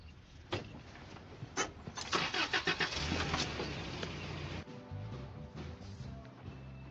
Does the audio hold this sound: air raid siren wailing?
no